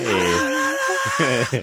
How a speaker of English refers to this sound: Hey! That's real crowd noise. Hey.